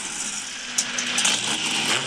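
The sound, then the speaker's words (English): A loud, continuous roar of fast car engines racing by, a dense droning wash of motor noise with slight rises in pitch and no voices. “Look how fast these cars are. Check this out. What? The engines are too loud.”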